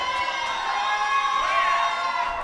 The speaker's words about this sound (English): Now, you heard all these people in the audience screaming and shouting because of the word pinche, and it's like it's a derogatory term, right?